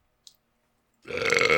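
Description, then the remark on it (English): A loud, drawn-out burp erupts after a brief click, rumbling deep and raspy for about half a second. “That was a good burp, by the way.”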